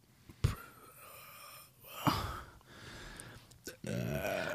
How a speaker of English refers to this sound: I smelled that burp from here